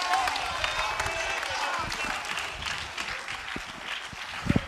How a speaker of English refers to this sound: Oh, come on, clap your hands unto the Lord.